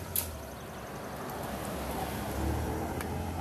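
A car drives past, its low engine rumble and road noise swelling gently and then easing off. The sound is fairly quiet and steady, with no voices.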